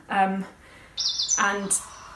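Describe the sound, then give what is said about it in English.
A few quick, high bird chirps ring out, broken up by two short, lower tuneful calls, with quiet gaps between them. “You might even say it's become a little bit of a bird's nest.”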